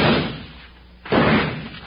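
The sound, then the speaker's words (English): Two loud gunshots, roughly a second apart, each a sharp bang followed by a brief rumbling decay, with no voices in between; shots fired by Jingles. “Good shot, Jingles.”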